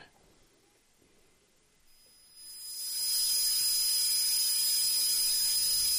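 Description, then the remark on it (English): After a couple of quiet seconds, a thin, steady high-pitched ringing tone appears, then a loud, constant hiss swells in and holds, a simulated tinnitus sound, one of ten basic tinnitus tones, with no talking. “But they're the 10 basic things that people with tinnitus hear.”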